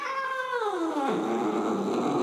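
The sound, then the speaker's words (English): A cat named Boss lets out one long, loud meow. Its pitch slides steadily downward into a low, drawn-out yowl, and no one speaks. “Boss called the shot with a mighty meow, which some have translated as, "Protect our pumpkin!"”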